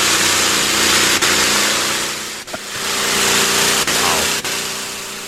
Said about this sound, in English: Can I go to the tractor pull again?